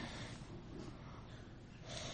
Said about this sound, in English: Here we go. Everyone's breathing in. Breathing. We're breathing.